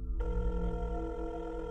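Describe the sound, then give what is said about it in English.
A telephone ringing tone on a 911 emergency call, dialed from a flip phone, plays steadily through the handset line, a sustained electronic ring with no talking, lasting under two seconds. “He grabbed it, flipped it open, ran his fingers over the numbers on the keypad, and dialed 911.”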